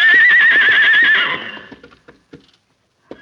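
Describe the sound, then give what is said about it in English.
A stallion calling for its master lets out a loud neigh with a wavering, trembling pitch that echoes in a canyon and fades after about a second and a half, followed by a few soft hoof knocks and shuffles. “The stallion lifted his head, and out of his deep chest came a call for the man he loved and trusted.”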